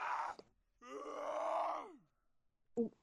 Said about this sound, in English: What the fuck is screaming outside? Oh, it's a frog! Sorry! Let me do that again. I just suddenly heard this noise outside my window. You got a screaming frog outside your window? Yeah.